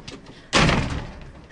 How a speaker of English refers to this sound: Now this week, I've come to the hospital at the Taji Military Complex to meet some of the health personnel who work here. And I'm just going to go through the side door here.